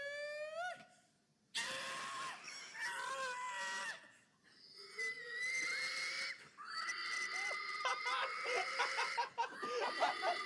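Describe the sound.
A large man, a contestant wearing a red and white striped polo and dark Oakley sunglasses, makes loud, wheezing, squealing pig noises in rising and falling bursts, like an exaggerated hog call, with brief pauses between strained, high-pitched cries and no ordinary speech.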